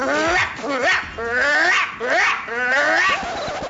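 A dog barks aggressively in a close, loud, continuous run of high, wavering, drawn-out yowls and yips, one after another for several seconds.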